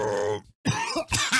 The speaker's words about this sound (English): I can't even do that. It makes me cough.